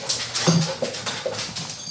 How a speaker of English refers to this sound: Now, I know everybody's hearing the noise. Yes, the dogs are in because they're dogs. Hey, they knew we had company.